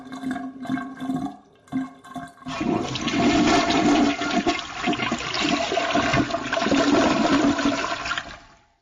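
A toilet flushes, starting with a few short knocks and clunks, then a loud, churning rush of water that roars steadily for several seconds before stopping abruptly.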